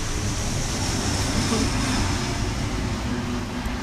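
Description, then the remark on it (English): An airplane passes overhead, a steady, fairly loud roar of low rumble and broad hiss that holds evenly for the whole few seconds, with no clear voices. “Okay, a plane is passing.”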